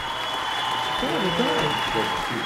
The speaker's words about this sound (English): Let's give her some applause. Eh? How about you guys feel about that? There we go.